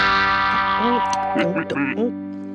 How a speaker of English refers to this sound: So we know what a wah-wah pedal is, right? Yes, yes, a wah-wah pedal. So here's what that sounds like.